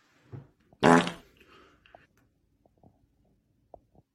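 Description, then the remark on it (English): A single loud fart bursts out with a brassy, buzzing rasp, followed by faint quieter sputters and small clicks trailing off. “This is another fart one.”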